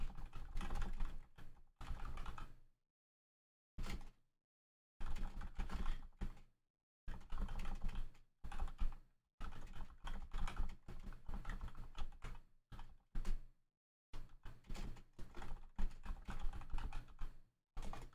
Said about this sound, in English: Typing that,